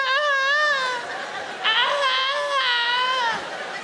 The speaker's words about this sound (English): cats on heat. Is there a more sinister sound out there than a cat sort of whining?